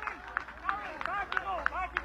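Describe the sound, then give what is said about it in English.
A crowd at a match between Carrigallen and Drumreilly claps in a steady, even rhythm after a Carrigallen free kick goes over the bar, about six sharp claps over two seconds, with a murmur of voices and shouts running underneath. “You can hear the crowd clap.”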